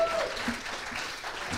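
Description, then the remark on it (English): An audience breaks into a round of applause for the Master Light light show, a dense, steady wash of clapping hands that holds at an even loudness throughout. “Round of applause.”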